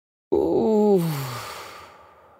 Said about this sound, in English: Sigh if you like. Or yawn.